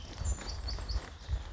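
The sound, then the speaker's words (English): Soft, high-pitched bird chirps repeat in a few quick notes, fairly faint, over steady footsteps thudding at a walking pace during an outdoor walking meditation. “But we keep on walking meditation, fresh air outside, clear the head, keep walking. The birds.”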